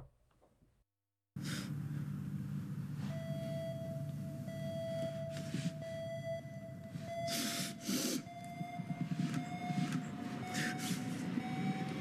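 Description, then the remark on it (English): A steady, piercing alarm tone sounds continuously over a low rumbling background, with loud whooshing, breath-like bursts cutting in every second or two. No one speaks. “Because here's every time there was something crazy that was happening, there was this alarm that was like heating up the situation.”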